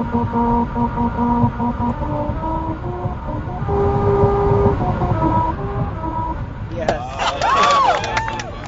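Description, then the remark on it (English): A Honda Civic rolls over a musical road in Lancaster, its tires droning out a melody of sustained buzzy tones that step up and down over low road rumble, followed by people cheering and shouting. “The final shot shows them all piled into a roomy Honda Civic to hear.”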